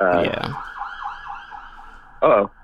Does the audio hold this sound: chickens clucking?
no